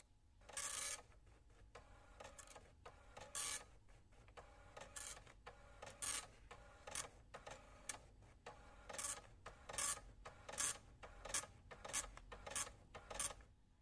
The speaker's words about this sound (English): If I want to get that message printed out, I can do that as well, just by hitting this button.